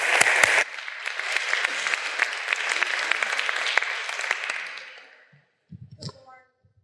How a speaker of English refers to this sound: Please give them a round of applause, folks.